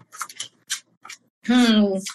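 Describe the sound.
Several quick, crisp papery snaps of tarot cards being shuffled and three cards drawn, followed by a brief stretch of a person's voice.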